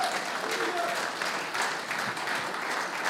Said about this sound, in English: So if you did that today, you're saved now. It's a beautiful thing, and we rejoice with you. So let's clap in those salvations.